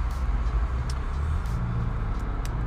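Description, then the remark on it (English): Steady low engine rumble from inside a car idling and creeping along in slow traffic, having moved about 100 yards in 8 minutes, with a muffled, continuous drone and a few faint brief ticks above it; no one speaks. “So listen, I've been in the car doing this now for 8 minutes and I've moved 100 yards.”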